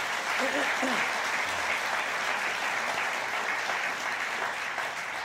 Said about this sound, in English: This is an odd thing to do, to applaud a question, isn't it, when you think about it, really? It's like, if you did that individually, people would think you were insane.